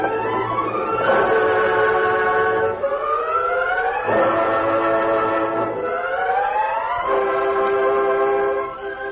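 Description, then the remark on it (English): A steam train whistle sounds in three long, loud wailing blasts, each sliding up and down in pitch, with a rumbling undertone and no voices. “Mike, the train.”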